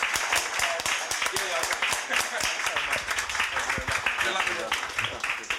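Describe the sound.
An audience breaks into steady applause, a dense wash of many hands clapping at a constant, fairly loud level for several seconds, with some crowd voices mixed into the clapping.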